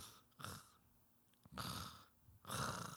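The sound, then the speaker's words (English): A voice imitates a man snoring: three rough, breathy snore-like bursts, the first short and the next two longer and louder, spaced with quiet pauses between them. “And it was just a guy snoring the entire time.”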